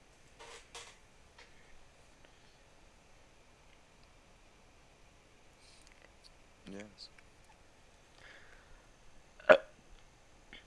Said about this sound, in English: That was a sad burp.